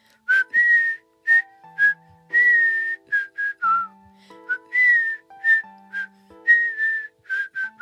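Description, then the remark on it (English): A person whistles an imitation of nightingale song in short, bright chirping phrases with quick trills and slides, repeated over a dozen times, over soft, low sustained notes. No one speaks. “Now sing to me and prove the media right for once.”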